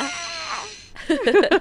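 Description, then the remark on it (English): A leopard gecko screaming: a thin, sustained whine gives way to a quick run of harsh, squealing chirps that waver up and down in pitch, fairly loud and with no talking. “Can we please superimpose a screaming gecko right here, right beside my head right now?”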